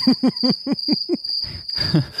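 Crickets chirp in a steady high-pitched drone throughout, with a quick series of six evenly spaced pulses at the start and a rustly, noisier stretch toward the end.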